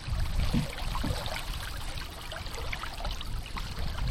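Steady splashing and rushing water, with a couple of low, soft swishes near the start like paddle strokes, as a canoe is paddled upstream on the Penobscot River. No voices.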